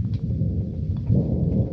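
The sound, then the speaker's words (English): A deep, rolling rumble of thunder from an approaching storm, heard near a cabin by a lake, fills the short stretch, steady and heavy, swelling a little louder partway through, with no voices present. “Say, that storm's almost on us”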